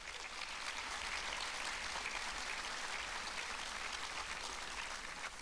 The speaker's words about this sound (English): If you don't mind, please give them a round of applause as well.